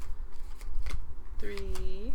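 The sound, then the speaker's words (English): Crisp rustling and snapping of playing cards being shuffled, with a few sharper flicks, while a voice murmurs briefly toward the end. “All right, I'm just gonna, like, do a little unofficial shuffle.”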